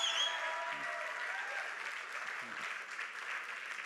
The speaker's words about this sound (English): Let's give a round of applause to our band. They are amazing.